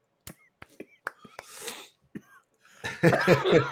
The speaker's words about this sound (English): I got the hacking cough tonight.